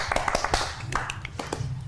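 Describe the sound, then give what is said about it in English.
A quick run of sharp hand claps, about eight or nine in under two seconds, made to represent the noise of stumbling into a bush during a livestreamed story game, landing in an uneven rhythm over a low, steady background hum. “I also clap because that's the noise that you make as you kind of stumble into a bush.”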